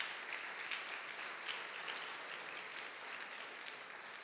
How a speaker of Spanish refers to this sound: Bendito sea el nombre, Señor. Dar un aplauso fuerte, Señor.